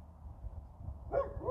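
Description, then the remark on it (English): A dog barks once near the end, followed by the start of a second bark, over a low outdoor rumble. No one speaks. “I can't see the dog.”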